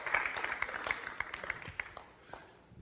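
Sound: audience applause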